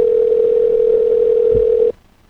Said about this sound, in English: Oh, shit. I dialed the phone. There it is.